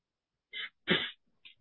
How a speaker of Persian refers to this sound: بس ببینی عطسه کردن همیشه بد نیست. بعضی وقتا مغز تکون میده که یه چیزایی هم آدم یادش بیاد.